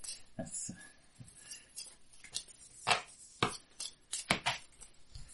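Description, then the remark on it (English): A deck of cards is shuffled for a deck-building game: a string of crisp, irregular papery snaps and clicks, with a few louder bursts toward the end and faint voices in the background. “Do I shuffle this in? Slightly better shuffle.”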